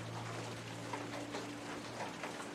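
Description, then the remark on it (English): Rain pours steadily in a dense, even hiss with no pauses, over a faint low electrical hum. No one speaks. “I can't hear over the rain, to be honest. I wonder why the rain is so loud for you.”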